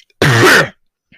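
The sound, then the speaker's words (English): The speaker gives a single loud throat-clearing cough, about half a second long and rough and harsh, followed by silence and a faint breath. “I'm about to cough here.”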